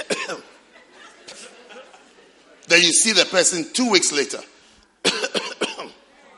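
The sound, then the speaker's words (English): A man talks briefly, then imitates a dry cough with no phlegm: a cluster of short, harsh, hacking bursts in quick succession, fairly loud, followed by a pause and another short burst. “dry cough. No phlegms, nothing.”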